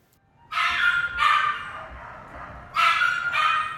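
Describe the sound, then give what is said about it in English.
Dogs in kennels, including terriers, Great Danes, Alsatians and bulldogs, whine and howl in drawn-out, overlapping cries, two long calls followed by a short pause and then two more, loud, with a faint background hum. “among the whimpering and raging, Matthews' bag rustles. The floor taps him from beneath. He's right there in the foreground where the dogs howl”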